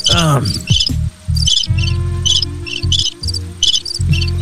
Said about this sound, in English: Motherfucker, turn off those crickets.